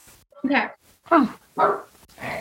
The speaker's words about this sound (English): Okay. Oh. Sorry, my dog is having a nervous breakdown.